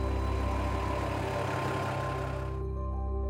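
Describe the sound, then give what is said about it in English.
A heavy truck engine rumbles with a deep, steady drone and tonal hum as one of Mission Transport Life's trucks pulls out, continuous throughout, with no voices. “Here's one of the trucks pulling out.”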